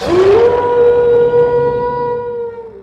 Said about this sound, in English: I was biting my way through my second hot dog when a howling shook the snowy treetops around our cabin.